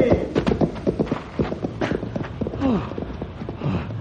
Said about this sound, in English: Oh, they scared my horse away.